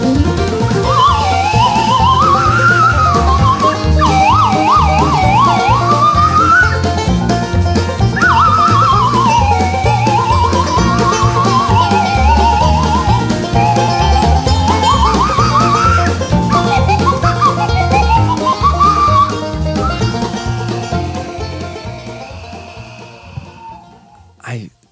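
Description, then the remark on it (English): A loud slide whistle solo swoops and wobbles up and down in glides and trills over a full, rhythmic band backing, fading out near the end. “Slide whistle solo, boy!”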